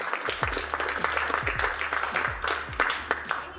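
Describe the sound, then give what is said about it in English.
A crowd applauds a panel and its moderator before a Product Hive discussion on UX design maturity, many hands clapping in a dense, continuous patter of sharp claps at a fairly even loudness, with no one speaking. “Let's give our panel and our moderator a round of applause”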